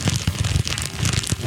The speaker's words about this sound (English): It's like a crackling fire. Not a fire. It's actually a chip bag.